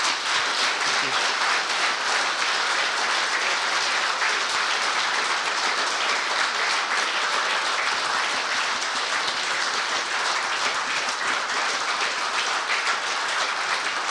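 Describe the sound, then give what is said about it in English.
A long, sustained round of applause from an audience thanking a guest speaker who flies a two-seat Spitfire, a dense and steady wash of many hands clapping that holds at full strength for the whole stretch, with no voices breaking through. “that's the longest round of applause we've ever had, so fantastic.”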